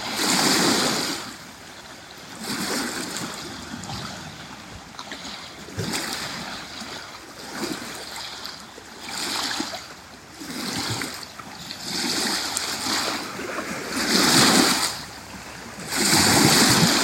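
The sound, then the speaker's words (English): Waves on the shore of Kitchigami break steadily in repeated rushing surges every few seconds, each swelling into a loud hiss of foam before easing off, with no voices. “Released energy. That's what waves are. Releasing energy. Energy moving. And then it hits the shore.”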